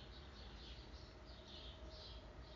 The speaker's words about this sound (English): I am so thankful and grateful upon today to hear the song of the free birds sing. See, I never really paid attention to it. Never really paid attention to the beautiful song of the free bird as it sings.